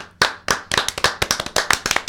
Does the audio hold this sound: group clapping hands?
yes